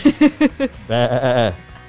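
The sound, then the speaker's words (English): A person mimics a goat's bleat: four short, choppy vocal pulses followed by one long, wavering, nasal bleat, loud, with no other talking. “That sound like a goat?”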